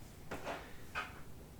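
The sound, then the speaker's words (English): A door snaps shut with a quick latch and a slight rattle as someone comes out, then a second sharp knock follows a moment later; both are fairly quiet, with no voices. “Comes out, snaps the door shut.”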